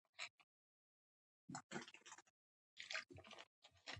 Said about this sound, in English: I'm going to drink a bit of water.